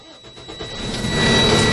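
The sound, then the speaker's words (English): A truck engine cranks with a few quick rhythmic turns, then catches and rumbles up into a loud, steady roar, with no one talking; the truck is being started again after an air brake test. “I'm going to move on to do another safe start.”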